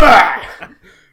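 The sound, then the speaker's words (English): A voice makes a short, forceful fake cough to disguise a word, a single harsh burst that trails off into a couple of softer breathy sounds, fairly loud. “like he's coughing, like, he wants to, like, hide something under his bed.”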